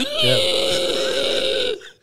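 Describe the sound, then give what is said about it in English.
A long, loud burp lasting nearly two seconds, with a strained, bleating tone that rises and wavers like an elk's call before cutting off abruptly. “Mine sounds like a fucking elk bleat.”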